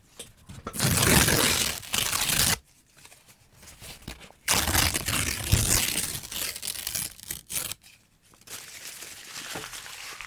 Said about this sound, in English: And maybe I'll tear it up in your left ear.